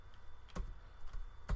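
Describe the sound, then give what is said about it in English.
Keyboard typing: a few sharp, uneven key clicks and clacks as a message is typed, with a couple of louder strikes standing out over a quiet background. No one speaks. “But I'm typing now.”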